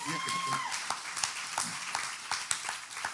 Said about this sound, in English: So second, my Hope Unlimited family, y'all have been tremendous. Standing up for what's right. Go ahead. You can clap.